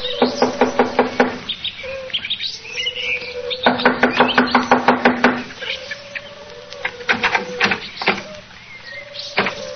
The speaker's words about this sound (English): Here we are. I'll knock on the door.